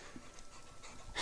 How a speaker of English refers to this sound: I'll really boost that dog panting. Yeah. It's like he's been panting like he's been doing something. Yeah. Like he's been running.